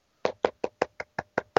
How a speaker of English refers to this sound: Are you clapping?